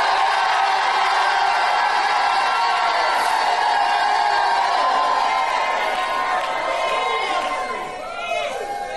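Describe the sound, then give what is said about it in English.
A large audience erupts in loud, sustained shouting and cheering, with overlapping voices and whoops for several seconds before easing slightly near the end. “I'm going to stop till somebody shouts with the victory today.”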